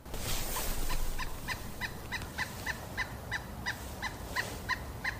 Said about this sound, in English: You're hearing a pileated woodpecker working its way up a tree right next to me on the Merced River in the middle of the Yosemite Valley.